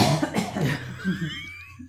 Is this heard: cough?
yes